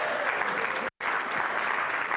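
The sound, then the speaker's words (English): A church audience claps steadily to mark the church's first year, a dense, even wash of many hands with no voices standing out, broken by a brief dropout of complete silence partway through. “You guys can clap that one up a little bit if you want to.”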